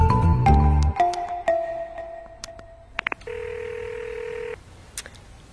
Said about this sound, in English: Come on, pick up that phone. Still dialing that number, I'm sorry. If she didn't pick up yesterday or this morning, she isn't going to now.